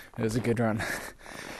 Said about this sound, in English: Sorry, I'm just fucking breathing. it was a good run.